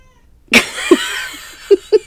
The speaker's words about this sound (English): The child has been put outside. Now we can continue without the meowing.